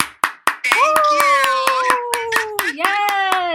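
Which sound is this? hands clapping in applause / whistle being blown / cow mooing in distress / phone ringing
hands clapping in applause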